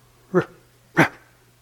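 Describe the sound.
Two short, sharp barks about half a second apart, fairly loud, made by a human voice imitating a dog, with quiet hum underneath.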